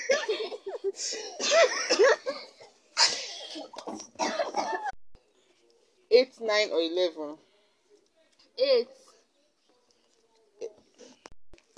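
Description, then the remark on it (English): Several people cough in rough, overlapping bursts, with a dense stretch early on, then scattered fits and a few isolated coughs separated by quiet gaps, some mixed with laughter. “Okay, all of you are having cough already.”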